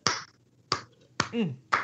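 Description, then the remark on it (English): Four sharp, evenly spaced hand claps land about every half second in a slow, deliberate rhythm, with a short murmured voice slipping in between the third and fourth claps. “I've never got a slow clap before, like ever, anytime.”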